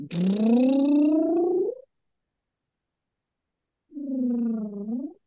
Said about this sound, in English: You can buzz your lips and do a scale like this.